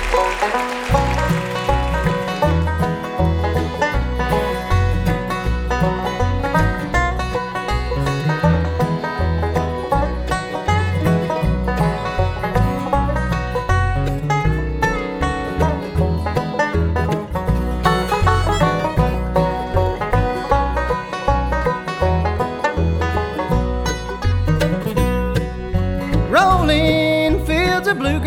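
A bluegrass band plays an upbeat instrumental tune on the WoodSongs Old Time Radio Hour, with bright plucked strings over a steady driving rhythm, held at an even, full loudness throughout with no singing.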